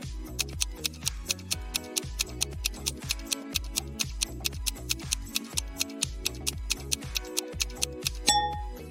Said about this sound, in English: And in front of the third exit, there's a timer ticking down to an explosion in 5 minutes.